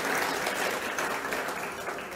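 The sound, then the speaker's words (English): A crowd claps steadily for a couple of seconds, a dense, even wash of many hands with no voices rising above it. “You're clapping now.”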